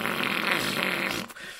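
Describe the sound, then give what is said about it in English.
A person blows a loud, buzzy raspberry that imitates a fart, held steadily for just over a second before cutting off abruptly, with no talking. “My dad bought one and then got angry at me every time I recorded, like, me making fart noises on it.”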